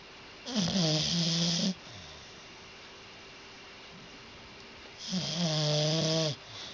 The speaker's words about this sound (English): It's our dog, Ellie, snoring on the floor. And she sounds like a piano? She's at the foot of our bed, and her snore was so deep and low and slow.